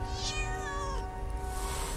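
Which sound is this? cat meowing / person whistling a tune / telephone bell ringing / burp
cat meowing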